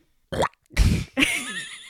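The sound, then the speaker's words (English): A person vocally imitates an odd animal noise, a pig-duck "oink quack": a short nasal grunt, then a longer rough blast, and a trailing warbling quack-like tone. “A pig quack. Yeah. It was more of an oink, an oink quack.”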